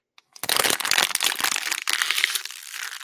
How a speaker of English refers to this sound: Here's a way to reduce trash fill, trash just capacity. All right. You drink a bottle of water. You smash it like this.